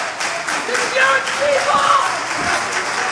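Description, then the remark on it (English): A wrestling crowd cheers on wrestler Mike Bailey during his match against Collier, a steady, dense roar of many voices, with scattered higher shouts and whistle-like cries rising briefly above the continuous noise. “Crowd again getting behind Bailey.”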